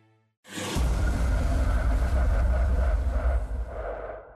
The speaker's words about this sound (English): A flash of light. The bus drives away.